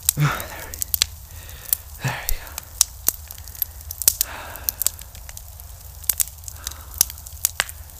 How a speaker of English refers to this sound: Never let a good campfire go to waste.